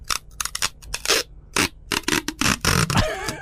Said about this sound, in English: I know that sound. What is that? You can't duck it. What? I can't say the rest. Duct tape? No, scotch tape.